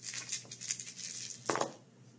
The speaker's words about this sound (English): So you make a decision how many wages you're making secret, and you roll simultaneously the other dice.